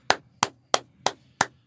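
A person demonstrates their usual clap: five sharp hand claps at a steady, fairly quick pace, each a crisp, bright smack with a short tail. They sound alone, with no talking over them.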